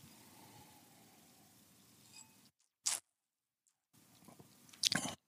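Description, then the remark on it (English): A couple of short, wet sipping sounds, someone taking a little sip of sparkling wine from a glass held in hand, separated by near-silence after a faint background hiss, with no talking. “And I'm going to take a little sip here, because I've got a glass of bubbly in my hand, and it's just wrong not to take a sip.”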